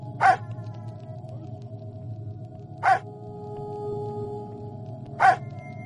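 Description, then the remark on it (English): A dog in a zombie video game gives three short, sharp barks spaced a couple of seconds apart to get zombies out of the way, each bark standing out clearly over a steady low hum and droning background tone. “You can get them out of the way by barking.”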